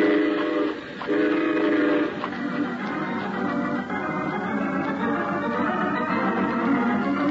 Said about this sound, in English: Let's be sure we're on that train when it pulls up.